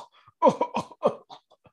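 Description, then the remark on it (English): A voice performs a wounded guard coughing: a run of four or five wet, strained coughs in quick succession, fairly loud, trailing off into weaker rasping breaths. “And this guard just coughing.”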